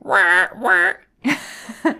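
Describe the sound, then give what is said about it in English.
A person imitates a bird with their voice: two drawn-out, nasal, quack-like calls close together, a brief pause, then two shorter, raspier squawks, loud. “It's like, hey guys, check out what cool bird noise I can do.”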